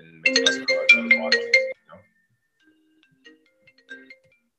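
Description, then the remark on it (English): A phone ringtone plays a short, bright melodic phrase of stacked electronic tones for about a second and a half, then cuts off, leaving only faint, scattered tones. “We got two phone rings.”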